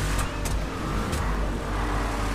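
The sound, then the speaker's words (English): A loud trophy truck engine in a video game roars and revs steadily throughout, continuous, with brief higher bursts of mechanical noise and no voices. “Trophy Truck, you have to survive.”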